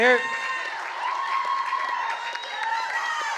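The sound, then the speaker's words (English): A church crowd applauds steadily for a few seconds to welcome newcomers from the United States who are starting a Brazilian-speaking church; dense clapping mixed with cheering and raised voices, holding a fairly even loudness throughout. “Is that part of the applause?”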